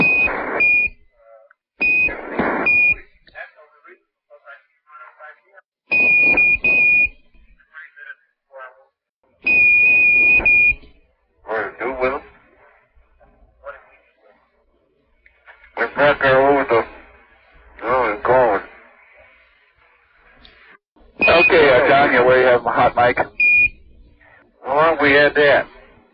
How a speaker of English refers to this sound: At the end of that clip, you can hear the beeping from Mission Control. I've compressed the clip a little bit, but like there was a long period in there while they're just talking and Mission Control's like beep, beep, beep, beep, beep, yeah.